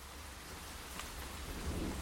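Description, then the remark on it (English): Hard rain pours steadily in a dense, hissing wash over a muddy battlefield after the gunfire has ceased, and a deep roll of thunder swells low underneath toward the end. No voices. “The only sound is that of the hard rain.”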